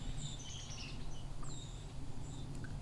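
Several thin, high seep calls of white-throated sparrows come in scattered bursts, faint over a steady low outdoor rumble.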